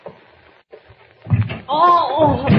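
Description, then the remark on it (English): An office door bumps open with a dull thunk partway through, followed closely by a rising, drawn-out vocal exclamation over a faint, murmuring background. “Thought I heard someone at the door.”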